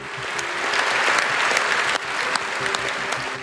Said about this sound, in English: Those parliamentarians gave him a lengthy round of applause.